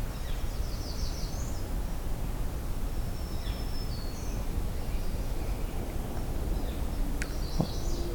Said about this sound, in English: Lots of black-throated green warblers.